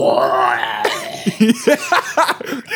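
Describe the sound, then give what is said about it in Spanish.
A voice imitates a woman moaning: a drawn-out, wavering high tone that slides around, then breaks into a series of short, breathy, gasping vocal bursts with uneven rhythm. “Así la jeva gima como...”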